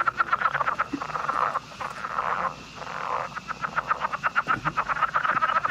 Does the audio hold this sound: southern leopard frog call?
yes